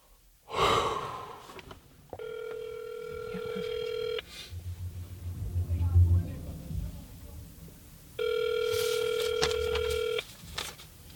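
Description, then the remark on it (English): An outgoing call from a mobile phone, placed from a car on a residential block, rings twice, each long electronic ring tone lasting about two seconds with a pause between. A sharp breath comes just before, and faint low sounds sit in the gap. “Back in the car on a random residential block, I take out my phone, punch in the number for the boy in the photo.”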